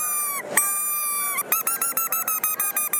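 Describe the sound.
A predator call imitating a fawn bleat: one long, drawn-out nasal cry, then a quick run of about ten short, pulsing bleats, loud with no talking.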